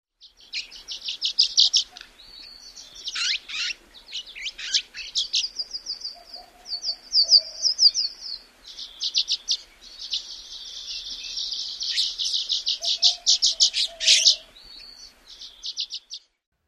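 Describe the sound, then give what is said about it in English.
Violet-green swallow song: a continuous run of high, thin chirps and twittering trills in quick, uneven bursts, with a few faint low coos underneath. No voices. “So one more time, here is the violet green swallow.”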